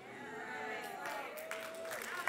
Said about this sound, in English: Ooh, y'all online, y'all hear how I go into golf claps real quick?